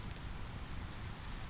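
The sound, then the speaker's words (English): Steady rain patters on a shelter overhead at night, a dense, continuous hiss of drops with a soft low rumble beneath, even throughout, with no voices. “Cozy in this magical moment, confined to my shelter by the rain, undisturbed, and wanting to be nowhere else, I feel at peace.”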